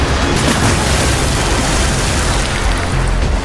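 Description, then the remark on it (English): A blimp, an airship with Spider-Man and Kingpin aboard, crashing into the sea after a violent descent: a loud, sustained roaring crash with deep booming rumble and hissing spray, steady and dense for a few seconds, with no voices. “The blimp crashes into the sea.”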